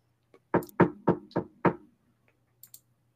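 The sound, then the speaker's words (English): Five firm knocks in a quick, even rhythm, imitating someone rapping at a door as an impression referencing Edgar Allan Poe's The Tell-Tale Heart, clear, followed by a couple of faint clicks and no talking. “Who's at the door?”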